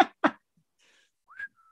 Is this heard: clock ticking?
no